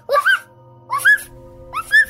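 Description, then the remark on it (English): A 5-year-old boy's voice imitates a dog barking, giving three high-pitched, two-part yips spaced evenly about a second apart, fairly loud, with a faint steady hum underneath. “this is what a dog sounds like.”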